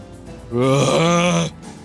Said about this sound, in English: As this yawn of just like pained relief just washes over my body as I receive this energy.